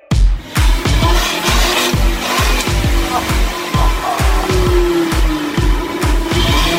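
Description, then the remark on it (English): The turbocharged T5 five-cylinder white block engine of a 2008 Volvo C30 runs loud, with steady rhythmic low thumps under a whining tone that slowly drops in pitch. No one speaks. “That is his 2008 Volvo C30 that has the T5 5-cylinder white block Volvo engine, turbo 5-cylinder.”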